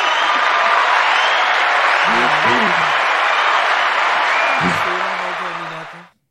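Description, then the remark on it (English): A steady, dense round of applause lasting about six seconds, with a few voices calling out over the clapping before it fades out abruptly at the end. “Give a round of applause for that, DC. Round of applause.”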